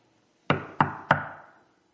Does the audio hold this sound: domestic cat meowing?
no